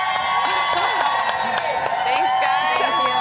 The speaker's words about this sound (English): Oh, the whole plaza is clapping for you.